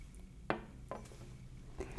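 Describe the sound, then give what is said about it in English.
A few light clinks of glassware, as a glass of water is set down and served in a piercing cafe, with soft taps scattered over about two seconds against a quiet, low background hum. “Let me give you some water.”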